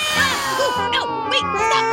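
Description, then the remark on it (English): Ten cats meow over one another in quick succession, their rising and falling cries overlapping against a steady tonal background, fairly loud. “Oh, my package! My 10 cats will love this.”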